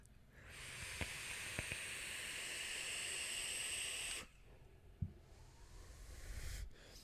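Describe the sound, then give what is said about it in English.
A steady, bright airy hiss runs for about four seconds as air is drawn through a Nudge RDA vape, then cuts off abruptly, followed by a couple of soft clicks and a faint breathy exhale. “I guess I would describe this airflow as sharp.”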